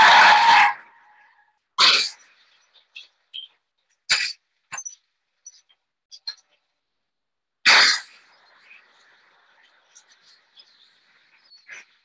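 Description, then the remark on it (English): A Mercedes Benz skids off the road and plunges 100 meters on an evening in October 1988, with several loud bursts of harsh tearing noise separated by pauses and faint scraping and rattling debris in between. “Christopher White survived this 100-meter plunge for two reasons.”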